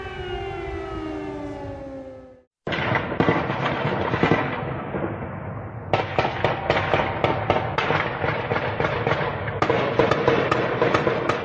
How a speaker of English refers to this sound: In scenes many considered to be from another age, air raid sirens blared, explosions rocked buildings, and civilians sheltered in subway stations.